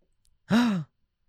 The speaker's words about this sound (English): That's me gasping.